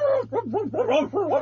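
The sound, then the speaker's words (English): A human voice, a colonel's, imitates a dog, giving a quick run of four or five pitched, wavering barks and yelps, fairly loud, with a low steady hum underneath. “did you just bark?”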